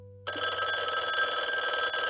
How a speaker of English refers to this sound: The house finally went quiet sometime around midnight, but it didn't stay peaceful for long. Around 12:30 in the morning, the phone rang.